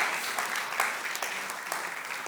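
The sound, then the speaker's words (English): An audience cheers and applauds steadily for the person who made a video for them, a dense, even crackle of many hands clapping that stays at a constant level throughout, with no one speaking over it. “So everybody cheer”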